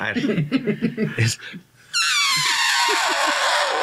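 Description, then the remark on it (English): A person mimics an elephant, first with a few wordless vocal bursts, then a loud, high, brassy trumpeting blast that slides downward in pitch and fades out over about two seconds. “I'm sorry, but this is the end. In an elephant voice, though.”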